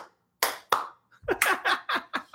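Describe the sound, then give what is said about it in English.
A brief, soft round of hand clapping: two spaced claps, then a quicker run of about six sharp, light claps, with no talking. “Outstanding, right? Like, so small clap.”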